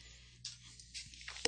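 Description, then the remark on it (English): A steady, low electrical buzz hums through the entire recording under a bed of faint hiss, with a few soft clicks and rustles near the end. “we have major buzzing tonight.”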